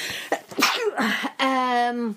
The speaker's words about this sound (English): I've got a sneeze coming.